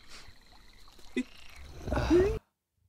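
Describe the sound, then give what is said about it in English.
A short comic frog-peeing sound effect: faint rustling, a quick blip, then a loud burst of croaky, gushing noise with a rising squeak that cuts off abruptly, no talking. “May I have some frog watering, please?”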